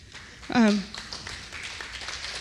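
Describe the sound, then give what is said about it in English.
A short, falling vocal whoop is followed by a steady patter of audience clapping that continues at a moderate level to the end. “How many claps did I get?”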